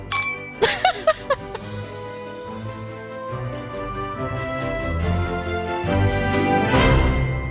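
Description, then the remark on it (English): A few bright glass clinks ring out in quick succession as glasses touch in a toast, their tones briefly lingering, before a fuller, sustained musical wash takes over for the rest. “Let's do a cheers. To the next 100 days! Cheers!”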